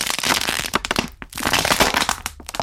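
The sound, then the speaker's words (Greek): A soft drink can vending machine at work: a loud, dense burst of rattling, crackling mechanical clatter, a short pause, then a second similar burst. No one speaks. “Είναι αυτόματος πολιτής για κουτάκια αναπτυκτικού.”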